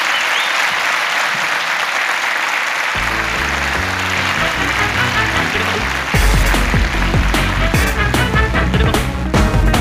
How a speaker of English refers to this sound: please give a massive round of applause, Bethany Black